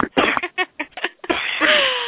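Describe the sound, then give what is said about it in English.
A coughing fit: a rapid string of rough, hacking bursts of uneven length, ending in a longer, raspy, strained exhale with a faint whistling tone. “I just coughed up a lung.”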